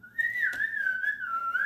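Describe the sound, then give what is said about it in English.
A man coming down a mountain trail whistles a single sustained, wavering, nervous-sounding tune to let animals know he is there, the pitch drifting up and down unsteadily, heard alone, with a brief soft click partway through. “It sounded like it was more of a nervous whistle.”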